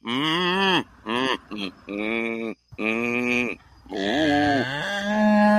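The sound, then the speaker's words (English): A man imitates a cow's moo with a series of loud, drawn-out, lowing vocal calls, several in a row with short pauses between them. “and this guy sounds like a freaking cow.”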